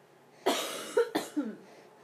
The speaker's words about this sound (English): Oh, Mama is coughing.